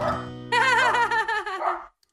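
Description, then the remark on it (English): A dog lets out a drawn-out, wavering bark-like yelp lasting about a second and a half, fairly loud, after a brief lower murmur, with no talking. “Is that your dog barking?”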